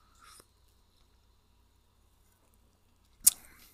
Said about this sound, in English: But you can take a little sippy sip.